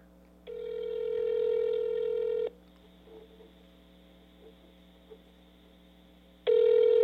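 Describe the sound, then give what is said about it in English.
A phone line rings out with a steady electronic ringback tone: one long burst, a few seconds of quiet line hiss, then another burst begins, with no one answering. “Hey, hey, just to prove your point, let's go ahead and let me get him on the phone.”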